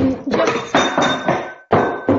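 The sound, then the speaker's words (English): A glass is dropped and clatters in a quick series of loud, hard knocks, with thin high ringing tones lingering between the impacts. There is no talking. “Sorry, dropped a glass there.”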